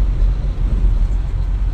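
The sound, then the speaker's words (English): A steady, loud low-frequency engine rumble fills the cabin of a moving truck, droning continuously with slight fluctuations and no voices. “no longer in a car, in a truck.”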